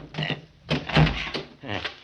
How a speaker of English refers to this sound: Can you get that door open? Oh, it's pretty well banged up. I think I can handle it.